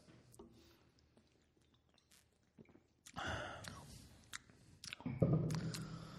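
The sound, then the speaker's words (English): Several people sip a stout beer: quiet clicks at first, then louder wet slurps and swallows come in two bursts toward the end, with no talking. “So we've decided on the run that every week we're going to have someone that brings in a beverage of their choice that we have a sip at the start of the show.”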